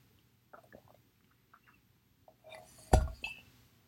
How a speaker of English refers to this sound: Anyways, let me drink my water now.